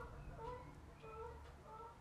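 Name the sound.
geese honking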